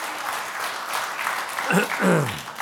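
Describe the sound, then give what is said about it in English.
An audience claps for Jesus, a steady, dense, even wash of applause with a voice or two calling out over it toward the end. “Come on, give Jesus a clap on it, because that's where we live.”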